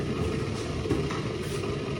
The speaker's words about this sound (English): Oh, the kettle's boiling.